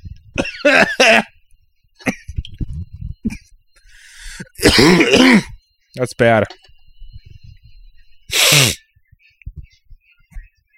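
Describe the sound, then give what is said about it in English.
Harsh, loud snorting bursts as saline nasal spray is drawn up the nose to clean out a dry nose, mixed with throaty hacking and groans, separated by quieter pauses; a man briefly speaks. “ASMR caveman cleans out his nose canal.”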